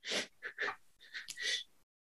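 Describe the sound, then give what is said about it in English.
A voice imitates coughing as rust puffs off. The coughing comes in two quick, rough clusters of about three bursts each. The bursts are breathy and fairly loud, then stop abruptly, with no other talking. “I make a coughing sound.”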